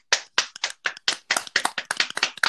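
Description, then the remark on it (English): A short round of hand clapping, about a dozen sharp, distinct claps in quick, slightly uneven succession, fairly loud, with no one speaking. “let's give a round of applause for Tina coming as a brunette”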